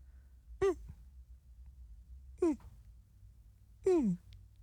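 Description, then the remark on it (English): A person imitates a dog's moan: three short, whiny vocal cries with no other talking, each sliding downward in pitch, separated by pauses. The last cry is longer and drawn out. “Okay, you do your impression of what you think your dog sounds like.”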